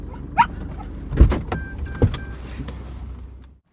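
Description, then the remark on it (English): All of a car's power windows whir down at once in a steady motorized hum lasting a few seconds, to air out a bad smell inside the car, with a couple of soft thumps and a brief yelp-like blip near the start, fairly loud. “Oh, Sam, get your window down. Dog's trying to force us out. Oh, Rover! All windows down!”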